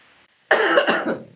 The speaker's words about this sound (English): I'm getting over a cold and I just cannot get rid of the cough. It's terrible.